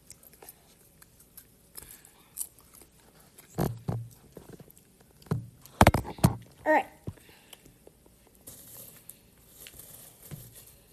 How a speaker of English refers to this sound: Right off the bat, actually, I just need to pour my snack I'm having in my bowl. Oh, it's popcorn. Butter popcorn.